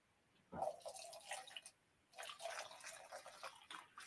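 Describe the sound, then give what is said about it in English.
A drink being poured in two short bursts, liquid splashing and gurgling into a glass, with a brief pause between pours; fairly quiet, with no one talking. “Pour some more drinks.”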